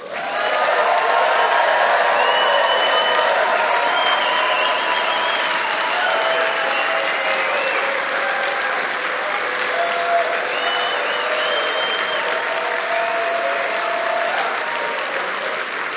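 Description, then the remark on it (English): A crowd at the LiveWire show applauds Courtney steadily for about sixteen seconds, a dense, sustained wash of clapping at an even loudness, with faint scattered cheers mixed in and no one speaking. “So let us take a moment, please, and mortify Courtney with a round of applause.”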